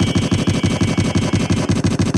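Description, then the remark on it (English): A loud burst of rapid-fire gunshot sound effects, like a machine gun rattling off evenly spaced shots for about two seconds without pause, with no voices over it, played as a salute to Kansas City Chiefs quarterback Chad Henne. “Let me get some gunshots here for my man, Chad Henne.”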